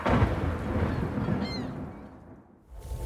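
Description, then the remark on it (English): A thunderstorm rumbles with deep, continuous thunder over steady rain noise, loud, easing briefly near the end before swelling again. No one speaks. “That storm doesn't seem to be letting up anytime soon.”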